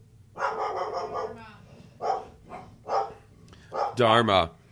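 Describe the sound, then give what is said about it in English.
A dog barks repeatedly, several loud, uneven barks with short pauses between them, the last one longer and more strained, barking at someone mowing their yard while guarding the house. “You're going to have to go up if you keep barking.”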